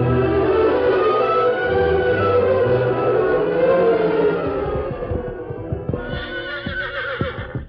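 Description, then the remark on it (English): A horse being harnessed to a wagon lets out a long, loud whinny that wavers and falls in pitch, followed by a few seconds of irregular hoof clatter and knocking as it shifts about. “Harness your nag to that wagon.”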